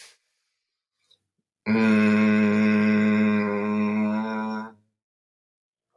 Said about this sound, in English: You can't hum when your nose is closed. It stops the hum. Let me try one more time.